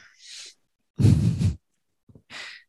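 A person yawns close by: a breathy intake, then a long, loud, groaning stretch of voice, a couple of small mouth clicks, and a soft trailing exhale.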